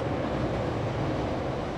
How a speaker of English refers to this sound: But every 8 minutes, there's a train. Northbound.